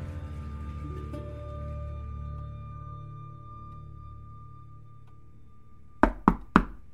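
Three quick, firm knocks on a door land near the end in an even rhythm, sharp, after several seconds of low, steady room hum: a young police officer, maybe 25, knocking on a woman's door.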